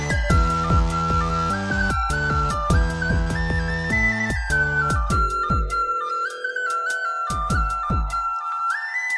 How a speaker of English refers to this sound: very cheap sounding whistle, but it's what I had. And I just sat in my car and I recorded it, and then I put it in Audacity and clipped it. And you did that with the whistle? Yeah. Wow.